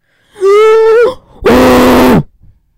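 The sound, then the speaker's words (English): Two loud, heavy breaths pushed straight into a microphone, the first with a groaning voiced tone and the second a harsher, noisy rasp, separated by a short pause. “do you mind just breathing, please?”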